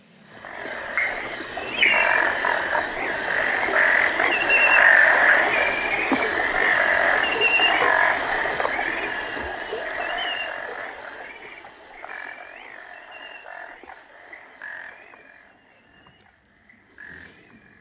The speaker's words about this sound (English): background, I mean, we're a swamp absolutely alive with frogs of several different species. Let's hear it. All singing.